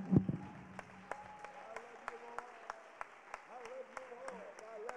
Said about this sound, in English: Would you help me? Let's clap our hands to the Lord one more time today.